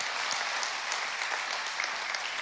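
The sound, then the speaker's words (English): A large crowd claps steadily in praise of God, the dense applause filling the space as a continuous wash of many hands, loud and unbroken for the whole stretch with no voices standing out. “Put your hands together. Clap your hands.”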